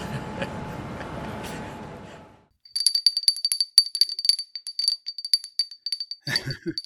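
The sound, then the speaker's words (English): A feeble boxing round bell announcing rounds of a boxing-match-style Christmas quiz gives a rapid run of thin, high-pitched dings for a few seconds, following a stretch of low rumbling noise and ending with a soft thump. “This year's took the form of a boxing match, with each of us trying to land a blow on the other in rounds that were announced by a very feeble bell.”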